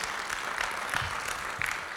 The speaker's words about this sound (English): Come on, if you believe that, give him a good round of applause.